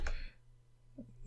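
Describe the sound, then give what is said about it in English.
Someone types and clicks on a clackety keyboard: a sharp clack opens, followed by a couple of softer taps about a second later over a low, steady hum. No one speaks. “I'm sure the podcast listeners love that ASMR sound of you typing on and clicking on your keyboard.”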